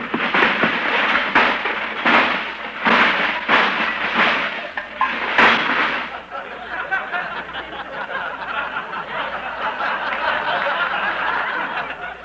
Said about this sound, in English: That was an electric train. What were you doing with that train?